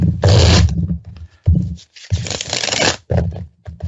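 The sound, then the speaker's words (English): Tarot cards being shuffled in several quick bursts, crisp riffling and rustling swells that pause briefly between rounds, with no voices over them. “I'll shuffle them up and take another look at that.”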